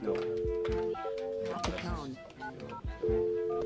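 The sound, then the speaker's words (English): Electronic DTMF phone keypad tones beep in a short sequence, some held longer than others, mixed with soft clicks and thumps as a cell phone number is dialed. “I'll keep trying his cell.”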